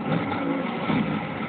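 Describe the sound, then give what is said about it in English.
A car engine revs hard, a dense, steady roar that holds at full loudness through the short moment without easing off. No voices are heard. “Oh, he caught her, dude. With the hood of his car.”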